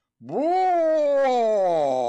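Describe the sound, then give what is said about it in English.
A person's voice imitates a growling cat, likened to the Cheshire Cat: one loud, sustained snarl that swoops up in pitch and then holds steady for about two seconds, on its own. “Like the Cheshire Cat, right?”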